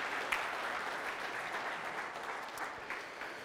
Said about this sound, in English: All right, give everybody a hand applause real quick.